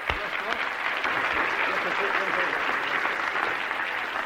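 Steady audience applause, a dense, even patter of many hands clapping that holds at a consistent level throughout without pause, as the audience claps for a man called up to speak at the microphone.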